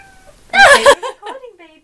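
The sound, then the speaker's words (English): A cat meows, a loud, strained cry followed by a softer, drawn-out meow that slides downward in pitch. “My cat is here.”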